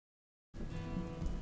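After half a second of silence, a steady, dense hiss of thunderstorm rain starts abruptly and continues at an even, moderate level with a low rumbling underneath.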